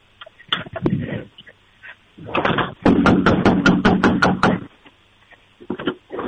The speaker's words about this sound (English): Okay. Let me go outside real quick and start banging on the door.